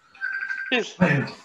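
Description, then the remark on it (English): A phone rings with a steady, high electronic tone for about half a second, then a person starts talking over it and the ringing fades out. “Sorry, is someone ringing me here?”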